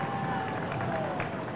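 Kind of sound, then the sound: crowd, big applause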